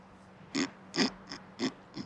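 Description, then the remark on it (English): A man snorts like a hog, five short, raspy bursts at a loose, uneven pace, moderately loud, with no talking around them; it is actor Dylan Baker playing a tobacco-spitting character in a John Hughes film scene. “But him playing this weirdo who shows up with the spitting with the tobacco and then just that snorting.”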